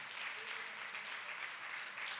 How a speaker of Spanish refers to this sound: Denle un fuerte aplauso al Señor, hermano, con todo el corazón. Fuerte ese aplauso.